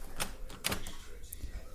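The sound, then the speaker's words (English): A door is opened by someone answering it: a few sharp clicks from the latch and handle, spaced about half a second apart, over a low background rumble. “opens the door and is confronted by two men in suits.”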